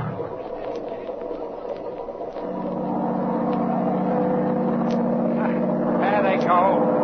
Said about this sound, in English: Come on, let's get going. Shut off that engine! Oh, no, he won't.